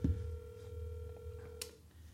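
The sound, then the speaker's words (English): A phone ringing on speakerphone held into a microphone during a phone-a-friend call: one long, steady electronic ring tone that holds for about a second and a half, then cuts off, with a faint low hum beneath and no one speaking. “It's a lot of rings.”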